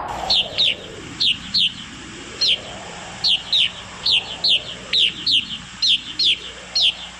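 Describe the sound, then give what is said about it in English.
Gray-crowned rosy finch calls in winter near the Coulee Lakes, where the finches roost in abandoned cliff swallow nests: short, bright chirps given in quick pairs, repeating steadily about a dozen times over a soft, whooshing background of wind or rushing noise. “The bird that settles in for a winter roost in the cliff swallows' abandoned nests is the gray-crowned rosy finch.”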